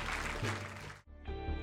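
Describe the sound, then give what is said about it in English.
A crowd claps for God in a dense, steady burst for about a second, then the sound cuts off abruptly and gives way to sustained, tonal music. “Can we give God a big hand clap?”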